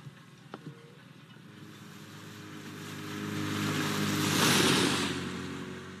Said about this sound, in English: And we see that there is a speedboat that is following closely behind Veronica's boat there.